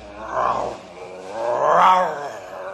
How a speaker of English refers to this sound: What's that? A grizzly bear. Shoot it. You build up fire. He not bother us.